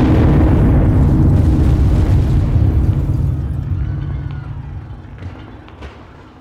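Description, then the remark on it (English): A horse-drawn cart loaded with 100 pounds of dynamite explodes in the street in front of the U.S. Assay Office at 12 o'clock: a powerful explosion roars with a heavy, low rumble that holds for a few seconds, then slowly fades as scattered crackles and bits of falling debris trail off. “As they finished, the cart exploded.”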